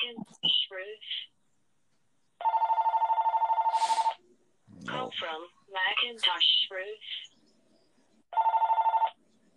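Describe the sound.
A landline telephone rings twice, a long trilling electronic bell burst each time, loud, with people talking in between the rings.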